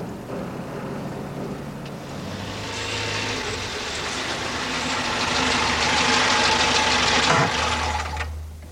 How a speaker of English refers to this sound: I've timed it. 74 to the minute. Like a heartbeat. I suppose a generator's like a great big heart.